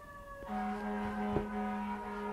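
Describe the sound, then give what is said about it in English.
An emergency siren sounds on a New York City street, a steady harmonic wail that jumps to a new pitch early on and holds it, with low traffic rumble and a brief thump beneath. “Aren't you impressed that I'm a New Yorker and I even hear the sirens?”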